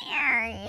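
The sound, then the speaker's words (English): A human voice mimics cats fighting on a fence with one short, strained yowl that starts high and slides downward, fairly loud, lasting under a second. “That's cats fighting obviously, on the fence.”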